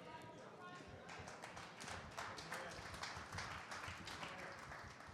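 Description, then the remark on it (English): Women in the audience clap steadily during a talk on prayer, a dense patter of many hands that holds an even loudness throughout, with murmured voices mixed into the applause. “Men, you ought to have been clapping, not the women.”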